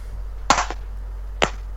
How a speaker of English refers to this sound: I'm going to applaud.